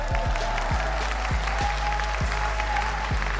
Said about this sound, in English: And that award goes to the company Waze. Give them a round of applause real quick.